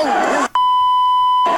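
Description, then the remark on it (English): A steady, loud electronic censor beep, a pure single tone held for nearly a second, cuts in between bursts of noisy, crowded voices in a YouTube compilation video of Black Friday brawls; the voices resume right after it ends. “I guess it's a lot of beeping for the home listener.”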